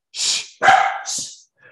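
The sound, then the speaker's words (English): A dog barks excitedly in quick bursts, three sharp, loud barks with breathy, huffing edges, followed by a brief quieter sound. “Sorry, the dog has gone a little crazy.”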